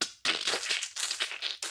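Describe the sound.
A voice imitates the wet squeezing of flesh held over a bucket until thick blood pours out, with a burst of crackly, squelching mouth noise: several rough, hissy bursts over under two seconds, broken by short gaps, with no words spoken.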